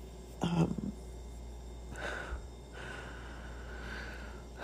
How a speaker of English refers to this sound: Sorry, I'm probably just like breathing on the mic